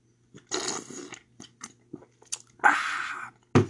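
Sipping coffee from a plastic cup: a few short slurps and crinkly plastic handling noises, then a longer drawn-in sip and a sharp final knock, with no talking.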